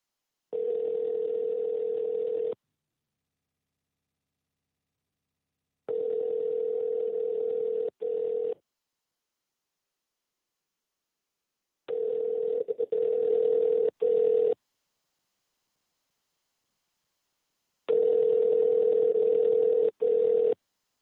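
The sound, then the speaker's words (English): A phone call's ringback tone, from a call placed to reach a man by phone, purrs in four long bursts separated by silent gaps of a few seconds, steady and moderately loud, with no one speaking. “So let's see if we can get him on the phone real quick.”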